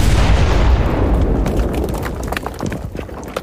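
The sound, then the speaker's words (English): A loud explosion booms at once, its deep rumble rolling on and slowly fading while scattered crackles and pops of debris continue to the end. “There was like a huge explosion across the podverse.”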